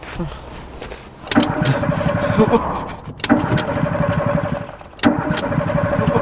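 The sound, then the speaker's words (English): A car engine cranks over and over without catching, three separate attempts of rhythmic, chugging turnover, each starting abruptly and running a second or two, fairly loud. “What is going on? Is the engine dead? Why did the engine have to die?”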